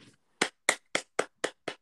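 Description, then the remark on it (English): Six sharp hand claps in a steady, even rhythm, about four per second, each crisp and bright with a quick decay. No voices, just the lone clapping. “Round of applause.”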